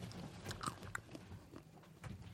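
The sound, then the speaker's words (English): Crunchy chewing of hard pistachio nuts, with sharp cracks and bites repeating irregularly over a low, steady background, no voices. “I brought something to literally chew on. Some pistachios.”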